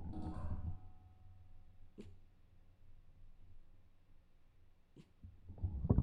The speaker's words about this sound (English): What are you barking at? Derby is down here behind me. She is hearing Taz upstairs barking at. He always has something to bark at. It's probably a truck outside or something. And she is sitting here in his bed, kind of, you can hear this, hold on.